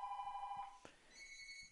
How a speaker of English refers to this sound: I hate when people call me during the show like this. Jeez. I think you have my home phone number.